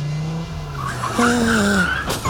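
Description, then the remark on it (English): A car engine roars and its tires screech in a long, wavering squeal that rises in pitch, ending in a brief crunching impact: a car crash from the film Sushi Girl. Loud, with no talking. “In Sushi Girl, you die in a car crash and it was all your fault.”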